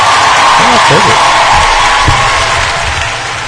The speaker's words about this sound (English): Oh, perfect. A little loud. Oh, this is a loud crowd applause.